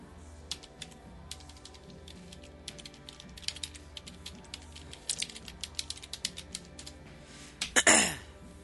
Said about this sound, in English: Hold on. Nope. Typing. Nope.